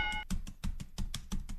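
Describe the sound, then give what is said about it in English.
Computer keys are tapped in a quick, fairly steady rhythm, about eight crisp clacks in a row with no talking. A brief faint tone sounds at the very start. “Let me hit a couple of keys here.”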